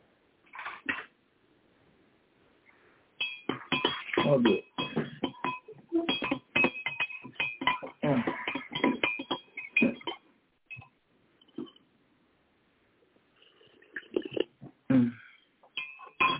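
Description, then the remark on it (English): A teacup and saucer clink and rattle in quick, bright bursts of ringing knocks over several seconds as tea is picked up to be sipped, pausing before a few more clinks; a voice speaks briefly. “Grab the tea and get a sip before we get cold.”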